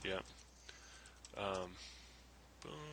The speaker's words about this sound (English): I'm typing away.